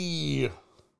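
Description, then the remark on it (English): A single drawn-out meow from Spencer the cat, fairly loud, sliding slightly downward in pitch before trailing off into quiet. “So this is Spencer the cat. He's a scary boy.”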